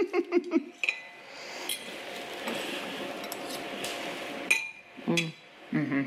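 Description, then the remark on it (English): Two bright, ringing clinks sound a few seconds apart, as in a toast, with soft clattering between them and brief voices murmuring at the start and end. “All right. Cheers. Cheers.”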